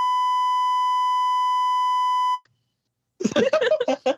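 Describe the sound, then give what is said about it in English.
A loud, steady censor beep holds one flat tone for over two seconds, then cuts off abruptly; after a short silence, a person briefly speaks. “start your sentence, and I'll beep for you.”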